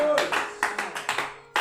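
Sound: hand clapping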